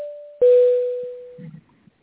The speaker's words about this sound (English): The quietness at flight level 370 in the cockpit is interrupted by the Boeing 727-200 cabin crew call chime sound.